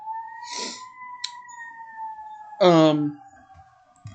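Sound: emergency vehicle sirens passing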